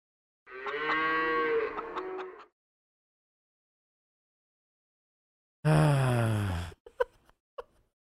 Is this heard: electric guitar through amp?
no